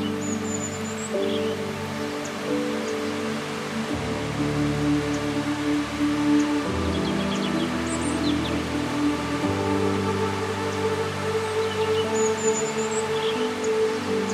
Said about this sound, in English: As you continue to breathe slowly in and out, you hear the sound of rushing water.